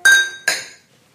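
Two bright glass clinks close together as glasses of Erdinger Dunkel beer are tapped in a toast, each ringing briefly with a high metallic shimmer before fading into quiet.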